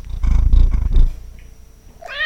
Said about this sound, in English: First of all, before we get to the Scaredy Cat content, I want to say we need to really work hard with this microphone to get her to do like a big, loud meow. It's wild because she's pretty talkative now that she has you in her life.